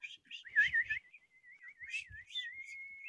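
person whistling

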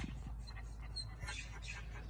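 small dog

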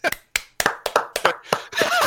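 hand clapping

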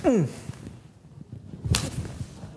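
slap

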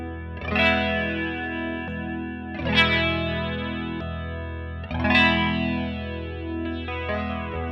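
guitar through effects pedal

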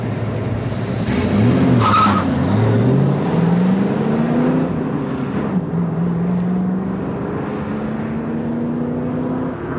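car driving away

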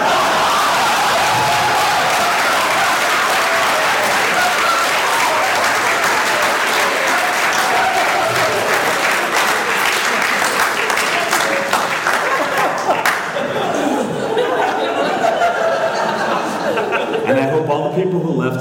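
audience cheering and applause

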